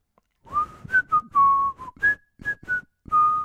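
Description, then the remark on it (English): A person whistles a short melodic tune, the bright, clear pitch stepping up and down in quick phrases over about three seconds, with slight breathy noise beneath each note. “What is that? I recognize the tune, but what is it?”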